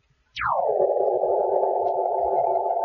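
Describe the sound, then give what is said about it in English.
A vision phone is switched on and powers up with a sharp whine that sweeps quickly downward in pitch, then settles into a steady, loud buzzing hum that continues unbroken to the end. “You know, this vision phone seems to be exactly the same type as the one downstairs in the televiewer room.”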